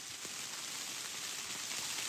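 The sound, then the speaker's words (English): Steady, dense rain pattering down in woods, growing ever harder, a continuous hiss of drops with occasional louder splats, even in loudness throughout, no voices. “I think saying that made it get even harder.”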